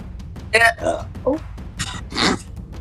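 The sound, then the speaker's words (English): Several abrupt hiccups in quick succession, the last one stretching into a short throaty burp, over a low steady background rumble. “Did you hiccup into a burp?”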